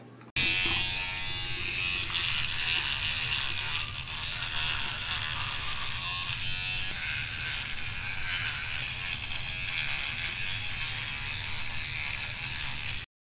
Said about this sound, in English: Oh my gosh, I forgot to tell you about the electric toothbrush.